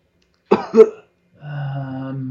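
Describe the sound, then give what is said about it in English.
A person with a really bad cough gives two quick, harsh coughs, then a brief pause and a steady, drawn-out voiced groan that trails off at the end. “I've got this really bad cough.”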